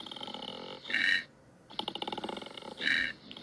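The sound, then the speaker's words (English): A koala bellows in deep, rasping pulses, a snoring inhale alternating with two louder, belching grunts that buzz with harsh, raspy overtones. No one speaks. “Sounds like an old man farting and burping and snoring at the same time. A koala? That's what they sound like?”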